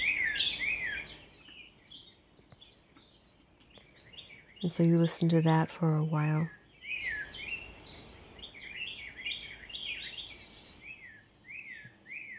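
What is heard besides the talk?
birds chirping and singing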